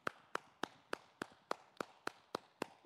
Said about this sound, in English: Hallelujah. I'm clapping all by myself. And that's all right.